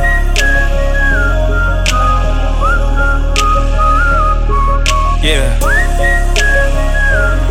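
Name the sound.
person whistling a tune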